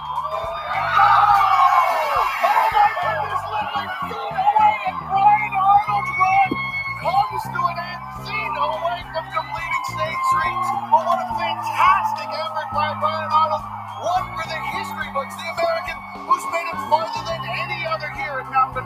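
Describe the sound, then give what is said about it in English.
A crowd, led by the competitor's wife, cheers loudly and continuously in a standing ovation for a rock climber who has just completed an obstacle course, with high whoops and yells rising over the roar and a steady low hum underneath throughout. “And this crowd, led by his wife, giving him a deserved standing ovation in appreciation of the history they just witnessed.”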